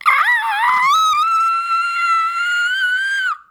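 A scream muffled by a fist in the mouth: one loud, sustained high-pitched wail that wavers at first, then holds a steady, slightly rising tone for about three seconds before cutting off.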